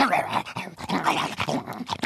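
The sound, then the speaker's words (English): A dog whimpers and growls in short bursts, whiny yelps mixed with low rumbling over about two seconds, with brief pauses between the sounds. “People think you're just a dumb mutt who smells bad, can't find a girlfriend, and has a crummy job.”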